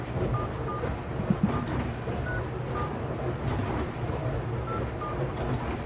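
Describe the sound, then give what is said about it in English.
Short, evenly pitched phone beeps pip in pairs over a steady hiss of line noise as someone calls a phone number listed online and waits for it to ring and connect, with no voices. “2 ringing dingies.”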